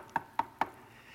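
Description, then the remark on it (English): Three sharp, evenly spaced knocks on a door, each a crisp wooden rap with a short resonant ring, fairly loud with no voices around them. “And right when the third vision concludes, there's a knock on the door.”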